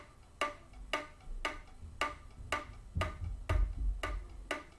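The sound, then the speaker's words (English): Flute key clicks, played with the flute placed on the player's face, tap out a steady, even rhythm, about nine sharp percussive clicks in a row, fairly quiet over a faint low rumble, with no talking. “again, it's a very different sound just from putting the flute on your face.”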